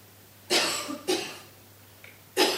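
cough

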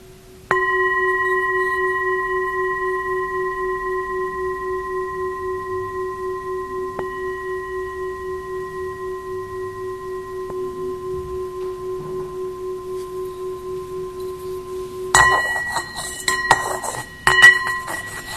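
meditation bell ringing

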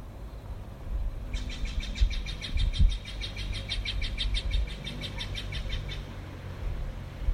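birds chirping outdoors

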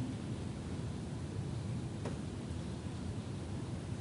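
rain falling

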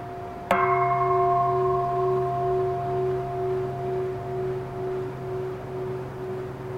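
meditation bell ringing

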